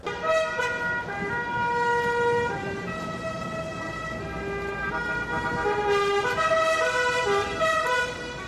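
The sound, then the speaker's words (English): Several car horns blare together, loud and sustained, overlapping in a steady chorus of tones that shift pitch now and then, as drivers and car club members cruise in procession through Havana, Cuba, with the rumble of vehicles on the street beneath. “Then, horns blaring, the drivers and club members pile into their cars and begin cruising in procession through Havana, down the famous Malecón,”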